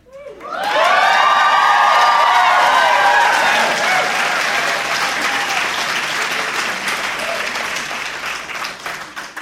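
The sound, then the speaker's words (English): A loud crowd bursts into applause and cheering, with high whoops and shouts rising over dense clapping at the start, then steady applause that slowly thins out toward the end. “I assure you that fanfare was not for thee.”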